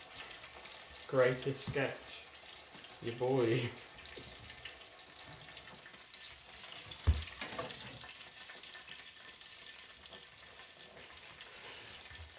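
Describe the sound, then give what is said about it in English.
Food sizzles steadily in hot oil with a constant broad hiss as it is stirred, and a single sharp clink of a utensil comes midway. Two short bursts of talking rise over the frying early on. “I was gonna go like that, but then I would have flung oil at you.”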